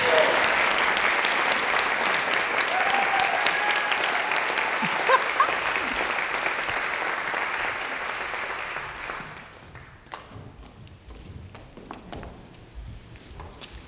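A crowd applauds a speaker with dense, sustained clapping for about nine seconds, then the applause thins and fades to a few scattered claps and quiet background noise.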